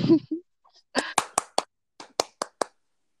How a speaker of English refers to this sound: Cue the applause, sound effect.